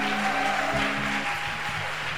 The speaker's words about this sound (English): Your hand clap is scanty, please. Why don't you clap your hands properly?